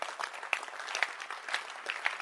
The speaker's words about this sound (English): Yes. You can clap your hands.